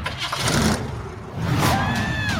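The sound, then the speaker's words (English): A station wagon's engine cranks and turns over, then revs up loudly in a second surge with a rising whine, continuous, with no one talking. “You went with station wagon? It's the only one that had an engine.”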